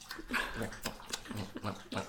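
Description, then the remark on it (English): A dog laps water from a bowl, a quick steady rhythm of wet splashy licks repeating several times a second with no talking. “Oh, now our dog is thirsty.”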